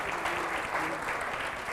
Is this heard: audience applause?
yes